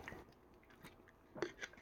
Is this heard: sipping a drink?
yes